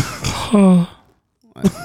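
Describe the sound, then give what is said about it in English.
A congested, nasal snort, followed by a humming, stuffy-sounding nasal noise. After a short silence, a second brief sniff or snort follows. The sounds could be a voice imitating a stuffed-up nose. “Blow your nose, bro. Go to the doctor about that shit.”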